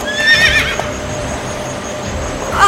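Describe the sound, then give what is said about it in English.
A horse trotting high and fast in a strong wind whinnies loudly, a shrill neigh at the start and another at the end, with light hoof clatter and a windy, rushing background in between. “Abigail's horse trotted so high and fast that Abigail fell off her horse.”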